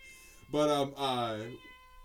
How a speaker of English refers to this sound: Sorry about that, by the way. Merlin's going to be meowing throughout the entire show. Yeah, he likes being involved. He's our background guy.